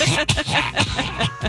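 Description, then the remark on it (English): A run of several harsh coughs in quick succession, fairly loud, with short raspy breaths between them and no talking. “And any parent out there, you can relate and have coughing compassion for.”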